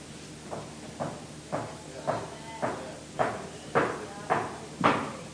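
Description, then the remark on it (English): About nine knocks on a floor in a steady, even rhythm, roughly two per second, each a dull thud that grows gradually louder toward the end, with no talking over them. “I better not knock too loud.”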